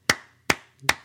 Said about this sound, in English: Well, first, the people get an applause.